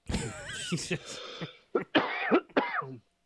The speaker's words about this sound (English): Holy moly. He almost coughed. I really want to. I don't know if I'll do this in the edit, but I really want to make like a fly out of his mouth when he turns to the side and coughs.